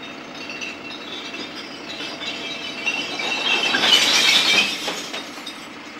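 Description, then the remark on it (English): A recycling collection truck raises its side and tips its load into compartments within its body: a continuous rattling cascade of glass and hard objects clinking and crashing, swelling to a louder burst near the end before easing off over a low rumble. “When necessary, the side of the truck is raised and the content is tipped into compartments within the body of the vehicle.”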